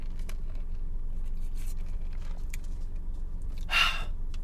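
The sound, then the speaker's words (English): A single short, airy slurp of an iced peppermint mocha from a cafe being sipped through a straw, rising briefly above a steady low background hum near the end. “Speaking of, let me just take some sips of this iced peppermint mocha.”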